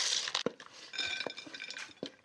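A utensil stirs around a bowl, clinking repeatedly against the sides in an uneven rhythm, with bright metallic taps and scraping over a steady rustle of food being mixed with paprika mayo poured over the top to coat it evenly. No one speaks.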